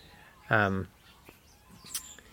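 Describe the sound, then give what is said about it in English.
A single loud, nasal goose honk with a rich buzzy tone, lasting under half a second, followed by faint scattered calls and rustling against a quiet background, from geese going mad up the back. “Anyway, you can hear the geese going mad up the back there.”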